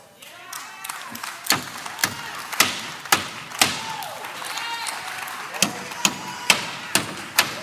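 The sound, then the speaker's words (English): A hammer nails a wooden board as a barrier over a door to nail it shut, with about a dozen sharp blows, uneven at first and then settling into a steady rhythm, while faint voices murmur underneath. “Now, we're going to make this, we're going to put a barrier over this door so it'll be nailed shut and you can't get into it again.”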